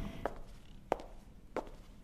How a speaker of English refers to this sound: Every footstep echoes in the silence.